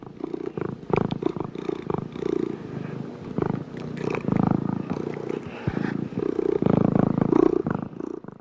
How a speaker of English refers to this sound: To give you a contrast, play the cat purr sound.